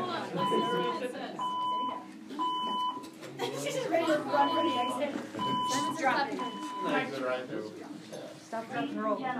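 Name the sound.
fire alarm beeping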